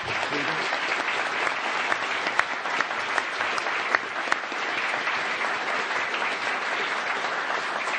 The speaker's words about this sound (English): It's been a really fascinating discussion. Can you give a round of applause to the...